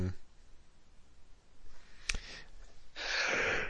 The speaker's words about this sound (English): Bless you. I actually thought I was putting myself on mute there, but I clearly didn't.